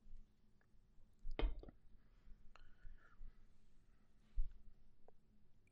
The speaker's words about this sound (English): Excuse me, I have to drink some water here.